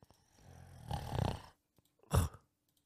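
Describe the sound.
A person imitates someone snoring in their sleep with a long, rumbling inhaled snore followed by a short, sharp snort after a brief pause, loud, with no speech.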